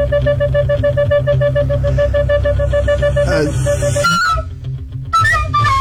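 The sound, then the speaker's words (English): A quartet of recorders plays a song together in loud, shrill, breathy tones, with a repeated note pattern and a few sliding, squeaky high notes toward the end. No one speaks. “And I got them to play 5 songs and I just need you to try to guess what songs they're playing.”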